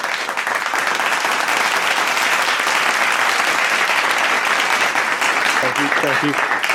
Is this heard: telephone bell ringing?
no